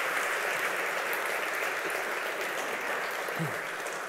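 Steady audience applause fills the whole stretch, a dense wash of many hands clapping at an even, sustained loudness with no voices standing out.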